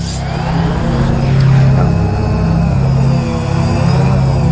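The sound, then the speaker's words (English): A large military drone's engine drones steadily overhead, a loud, continuous low mechanical hum with a faint whine above it, swelling slightly midway and holding constant throughout. “Now, this involves a drone, but not the kind of drones that we have just been talking about, personal, small drone.”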